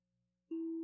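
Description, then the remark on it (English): After a moment of near silence, a steady relaxation tone sounds abruptly and holds, a loud, smooth, sustained hum with soft overtones and no talking. “As we hear the tones, there's the invitation for relaxation to begin.”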